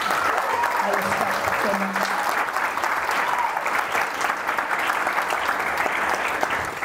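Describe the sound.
Sustained applause from an audience for a guest, a dense steady wash of many hands clapping at an even loudness for several seconds, with faint voices murmuring underneath.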